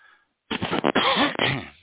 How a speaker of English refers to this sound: Jeez, that cough comes back every Thursday.